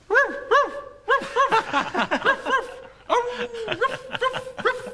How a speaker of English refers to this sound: Oh, me, oh, my. He barks all day and night.